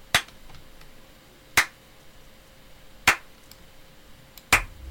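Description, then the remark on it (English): A slow clap: four sharp, crisp hand claps spaced evenly about a second and a half apart, each one short and bright against a quiet background with no voices. “It's a slow clap.”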